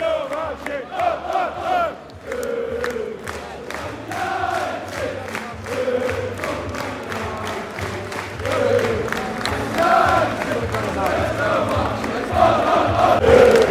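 A large football crowd at the end of an away match roars and chants continuously as the players come over to them, voices swelling in waves with scattered shouts and rhythmic claps, loud and dense throughout, with a low steady rumble underneath.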